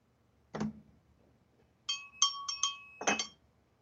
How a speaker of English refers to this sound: I just felt it needed a bell for sting.